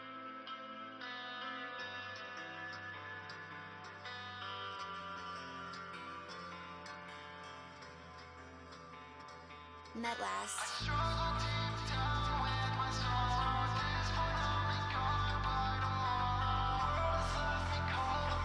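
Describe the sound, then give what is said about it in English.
A music intro opens softly with washed-out, distant-sounding reverberant tones, then about halfway through swells into a fuller, louder passage with deep bass and bright, ringing layers. No one speaks. “I like the intro a lot with the distant reverb.”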